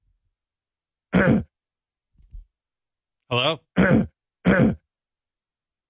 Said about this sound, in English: Hello? Nothing. He won't stop clearing his throat.